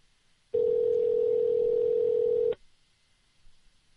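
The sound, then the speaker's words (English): A single steady telephone ringing tone sounds for about two seconds on a call to the phone line of Rob Ford, the mayor of Toronto, at almost 11 o'clock in Toronto. The tone is loud and clear, then cuts off into faint background quiet with no talking. “It's ringing.”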